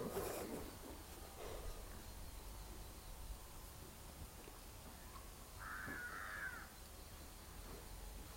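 A crow caws a few times: two harsh calls near the start, then a longer, drawn-out caw after a pause, all fairly faint against a steady hiss of background noise.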